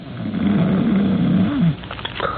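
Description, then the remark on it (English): A loud snore from a big, heavily muscled, early middle-aged man lying in a bed rumbles in one long rasping breath for over a second, then cuts off, leaving quieter background noise behind. “From beyond the curtain and the other bed in the room, from the big, heavily muscled, early middle-aged man in it, comes a rhythmic and ear-shattering snore.”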